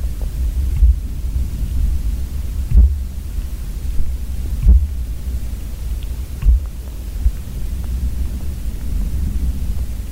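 Muffled, low thumps from banging on a tree, carried almost 100 feet through the ground from tree to tree into a hydrophone, land about every two seconds, four or five in all, faint against a steady deep rumble and soft hiss.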